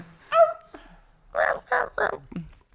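Dogs bark three times in quick succession, loud, after a short whiny yelp from a dog that was stepped on; the barks stand out against an otherwise quiet background.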